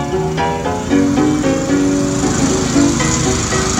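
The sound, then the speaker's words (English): A loud, steady engine drone from a power lawn mower mowing the lawn runs throughout, its pitch wavering up and down slightly, with no voices over it. “You can't come around here while I'm mowing the lawn.”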